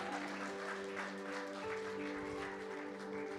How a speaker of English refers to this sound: Это аплодисменты вам. This applause is for you.